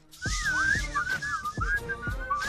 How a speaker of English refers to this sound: Whistle for me.